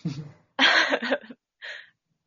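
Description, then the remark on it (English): A loud cough burst follows a short throaty rasp, then a smaller, quieter cough closes it out, with no talking; a person coughing during a phone call. “Sorry, I put my phone on mute to cough, and then I tried to unmute it three times, and it kept not doing it.”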